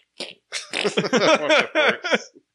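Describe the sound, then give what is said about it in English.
A person vocally imitates laser blasts as the firing sound of a gun: a rapid burst of sweeping, buzzy zaps strung together for about two seconds, with no other speech. “I would do the laser sound. I would probably pick my own sound.”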